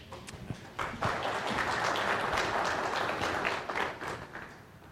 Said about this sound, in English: I don't know why they're applauding it. I'm not quite used to applause.